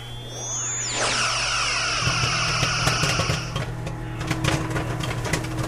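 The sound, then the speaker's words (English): Popcorn popping in a microwave: a steady low hum with scattered sharp pops that grow more frequent, following a burst of swooping, sci-fi-like electronic tones at the start. “Holy popping small little yellow vegetables, Bob. Ooh. Popcorn.”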